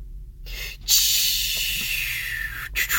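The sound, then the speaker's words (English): A loud, steady hiss of releasing air from a hybrid electric bookmobile (mobile library) pulling away, not a train, bursts in after a short pause and holds for about two seconds, briefly cutting out near the end before resuming. “We have left the station.”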